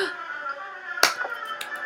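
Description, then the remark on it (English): A single sharp hand slap cracks out midway, loud, over a steady humming background tone, followed by a fainter smack a moment later. “Slap.”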